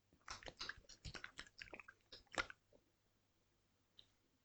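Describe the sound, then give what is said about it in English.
Someone gulps a drink right up against the microphone, a quick run of wet, clicky swallowing sounds for about two seconds, then near silence with one faint click after. “I try not to gulp too much.”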